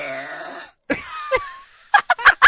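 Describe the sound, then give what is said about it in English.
A woman's long, loud, droning burp with a buzzy tone, the one that set the Guinness World Record for the loudest burp, followed after a brief pause by several shorter rough, gurgling bursts and a thin squeaky whine. “Woman breaks Guinness World Record for world's loudest burp”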